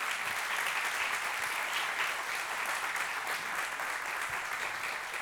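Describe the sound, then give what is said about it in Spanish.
An audience applauds Jesus steadily, a dense wash of many hands clapping at once, sustained and even in loudness for several seconds with no voices standing out. “Dar un aplauso a Jesús.”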